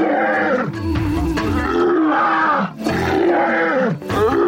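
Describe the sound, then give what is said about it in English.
A pride of female lions, apparently four, roars together in deep, overlapping bursts that rise and fall with brief dips between them, a loud, continuous chorus with no talking, recorded in Tanzania just outside the Serengeti. “Hearing the sounds of a pride of females roaring.”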